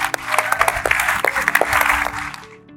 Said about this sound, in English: So please give them a big, big round of applause.